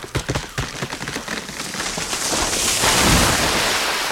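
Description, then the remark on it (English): A cluster of sharp splashes gives way to a loud, churning rush of water that swells and holds steady as a person trying a rope swing slips and falls into a river, thrashing about. “I've slipped and fallen into the river.”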